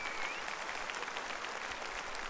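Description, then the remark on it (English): An audience claps their hands to give praise to Jesus, in a dense, steady wash of applause, many overlapping claps blending into a continuous crackling sound with no voices standing out. “Clap your hands and give Jesus praise.”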